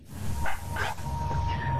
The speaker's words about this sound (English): Sorry, my dog's just playing with some.